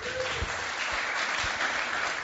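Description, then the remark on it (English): A crowd claps steadily and evenly to support a nervous speaker about to share a few words, a dense wash of many hands at moderate volume that holds for a couple of seconds, with a few louder individual claps standing out. “She is very nervous, so please be really supportive and give her a lovely clap.”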